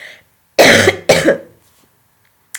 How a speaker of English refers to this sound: The air quality here is quite bad. That's why I'm coughing this morning. There is a smoke and haze and dirt in the air that's unprecedented here.